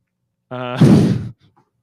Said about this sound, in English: Shit, I gotta fix this tonight. My camera keeps falling off. I gotta stop banging the desk.